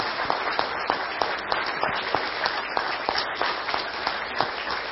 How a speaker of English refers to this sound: Just real quick, I just want to say thanks, and maybe we can just honor them with a round of applause.